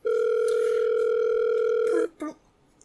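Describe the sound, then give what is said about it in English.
A steady, loud telephone dial tone hums for about two seconds with a slightly tinny speakerphone quality as a phone held between three people is dialed, then cuts off, followed by a brief muffled blip. “Yeah, I'll dial it. Are you putting it on speaker or letting him talk to them?”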